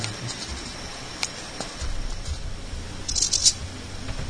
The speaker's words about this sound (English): Click on hissing cockroach. You've never seen it? See if there's a video for hissing cockroach. I'm sure there is.